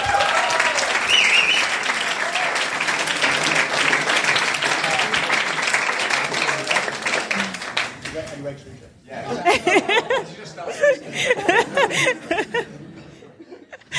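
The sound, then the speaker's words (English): A crowd applauds in a dense, steady wash of clapping that thins out after several seconds, giving way to scattered claps, chuckles and murmured chatter. “Let's give a clap.”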